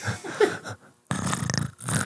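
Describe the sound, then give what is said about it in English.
A person imitates a purring, growling cat, making two raspy, rattling throat sounds separated by a short pause, the second burst longer and rougher than the first. “It halfway sounds like a Predator and like an 18-year-old cat purring.”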